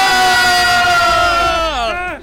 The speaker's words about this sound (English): Today's secret word is video game news. Anytime someone says a secret word, scream real loud. Let's try it out, shall we? In video game news...